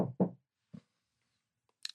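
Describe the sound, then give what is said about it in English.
Knocking on a door: two quick, heavy thuds close together, then a single softer knock after a pause, followed by a brief high-pitched squeak at the end. “Knock, knock, knock, knock, knock.”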